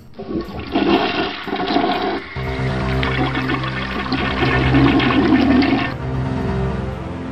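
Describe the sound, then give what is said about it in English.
A toilet flushes, a loud rushing gurgle of water swirling down for several seconds before the tank begins to refill with a steady hiss. No one speaks. “I'll cue the toilet flushing sound.”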